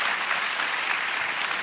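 An audience applauds steadily to thank youth who spoke on stage, a dense wash of many hands clapping at once, fairly loud and continuous throughout with no voices rising above it.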